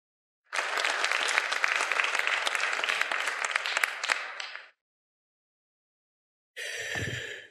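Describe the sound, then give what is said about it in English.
An audience gives a round of applause to everybody who volunteered, dense steady clapping for about four seconds that fades out, followed by silence and then a brief second burst of clapping. “All right, folks, please give everybody a round of applause who volunteered.”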